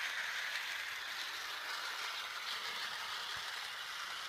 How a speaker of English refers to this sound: we've hooked up a wireless lavalier mic so that we could hear the sound of the train going around in circles and not have to worry about microphone cables. And if you look down on the train, you'll actually see the microphone attached to the front.